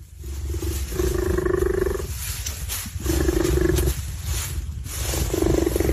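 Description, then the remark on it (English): Three loud, drawn-out big cat roars, low and buzzy with a rich harmonic tone, each about a second long, separated by short pauses over a steady background hiss. No one speaks. “I believe, are these two jaguars?”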